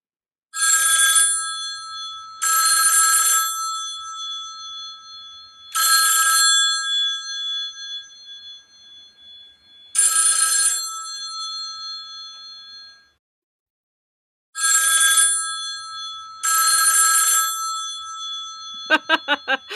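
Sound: telephone ringing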